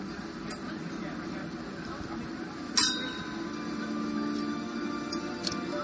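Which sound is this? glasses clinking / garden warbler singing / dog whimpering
glasses clinking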